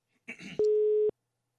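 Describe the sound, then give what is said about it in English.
A foreign-sounding telephone tone: one loud, steady electronic beep lasting about half a second, just after a short burst of crackly line noise. No one speaks. “Why is it that weird international sound?”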